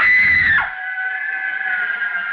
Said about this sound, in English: The girl, screaming with rage, turned on him and buried her nails in his face, using the most frightful words that ever fell from the off-scouring of a guardhouse.